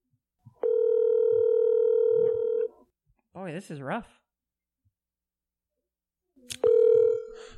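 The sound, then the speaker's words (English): A telephone ringback tone on an outgoing call made live on air: a steady, mid-pitched buzzing tone lasts about two seconds, a man briefly speaks during the pause, then the tone starts again. “All right, we're calling again.”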